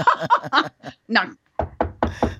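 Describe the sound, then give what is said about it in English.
A quick series of four solid, fairly loud knocks lands in the second half, after a stretch of voice-like vocal sounds. “She's so funny when she hears a knock.”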